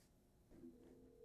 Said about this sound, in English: I don't know if this is gonna work or not because like the Wi-Fi is still kind of. Is it ringing? I can hear it.